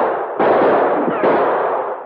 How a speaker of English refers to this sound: The shots were coming from a screen of trees which fringed the edge of the cliff. The Mounties fired back at the flashes.